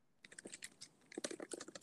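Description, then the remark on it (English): Rapid, irregular clicking of fingers typing on a computer keyboard, a steady flurry of fairly quiet keystrokes with brief pauses and no voices. “Are you looking it up? You're typing.”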